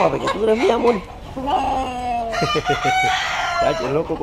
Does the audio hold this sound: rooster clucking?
yes